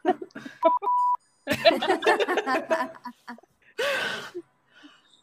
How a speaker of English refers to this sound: I've got like a beep button. Yeah, beepy.